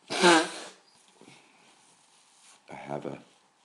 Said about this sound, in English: Excuse my sneezing.